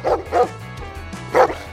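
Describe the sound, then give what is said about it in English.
A dog barks three times, two quick woofs close together and then one more after a short pause, loud, over a low, steady musical backing. “If you got all 5 correct or learned something new, do 5 dog barks.”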